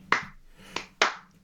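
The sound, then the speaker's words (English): Three sharp hand claps in an uneven chant-like rhythm, attempting the fans' clapping chant for wrestler Yoshi-Hashi: one clap, a pause, then two in quicker succession, with no talking and a quiet background. “Yoshi, however you clap Yoshi fucking Hashi, I'm too shit at clapping.”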